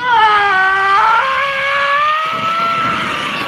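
A woman lets out one long, loud, high-pitched scream from a played sound clip, holding steady for a few seconds and rising slightly in pitch, with no talking around it.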